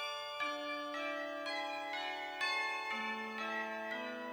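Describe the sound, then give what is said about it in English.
A peal of bells rings out in a steady sequence of overlapping strikes, each tone sustaining and blending into the next, bright and resonant with no voices present. “And there I heard the ringing of the bells.”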